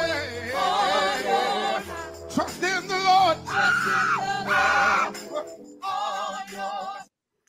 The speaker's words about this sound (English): The people are just singing, and this brother just starts screaming for no reason. He turns to his right. He's not screaming at anyone. He's just screaming.